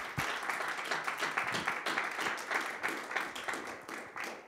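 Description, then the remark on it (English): An audience at a Father's Day service clapping steadily, many hands blending into dense, rapid applause that holds at an even loudness throughout, with no voices standing out. “Oh, you can clap.”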